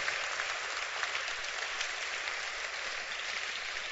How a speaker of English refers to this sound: Feel free and clap your hands. Yeah, we believe in clapping.